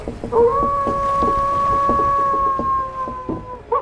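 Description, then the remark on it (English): Rhythmic oar strokes splash steadily through water as boats row away from a village beach, while a long, sustained horn-like tone drones over them before fading out. “The boats of the Wolf Empire left”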